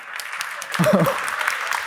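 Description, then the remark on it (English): An audience claps steadily throughout for the people who made gingerbread houses, a dense wash of many hands that swells slightly partway through, while a voice briefly speaks over the applause. “We can't just give them a round of applause.”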